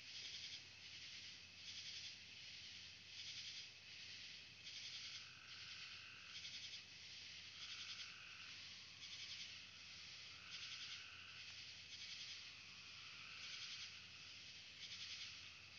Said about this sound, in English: Seems like crickets are having a say. And other things too that I do not know. The sounds of the wood.